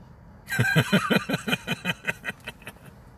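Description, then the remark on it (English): A train clatters past on a city street with a fast, steady run of metallic clacks that gradually slow and fade, set against a low rumble of cars going back and forth; no one speaks. “Y'all hear the train in the background? Y'all hear the cars going back and forth?”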